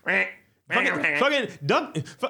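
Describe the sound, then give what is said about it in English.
A person imitates a duck, letting out a quick run of nasal, drawn-out quacks with a brief pause after the first, fairly loud. “Not them ducks. Fuck them ducks. Poor ducks.”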